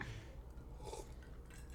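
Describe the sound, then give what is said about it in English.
A quiet sip from a drink, with soft wet mouth sounds and a faint slurp and swallow, with no talking. “Oh, take another sip.”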